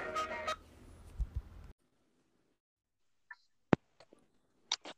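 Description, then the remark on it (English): A telephone being dialed to call Kevin the Condor: a burst of noisy, tonal sound gives way to quiet, then a few sharp, separate beeps and clicks spaced irregularly, fairly loud, with no talking. “I'm gonna get his ass on the phone.”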